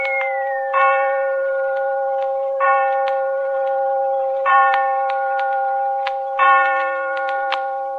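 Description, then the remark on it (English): Clocks at a railway station in London strike with four slow, evenly spaced chimes that ring on over a steady sustained tone, while faint mechanical ticking clicks along underneath. No one speaks. “As we enter the station, the clocks are striking.”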